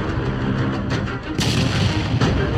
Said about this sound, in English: I've been waiting to use that explosion.